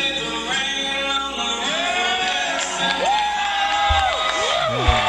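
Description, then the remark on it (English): A concert crowd cheers and whoops steadily, with scattered shouts and rising and falling yells cutting through a dense wall of noise, one voice hollering louder near the end. “Oh man, somebody in that crowd. Someone's like, yeah, get it.”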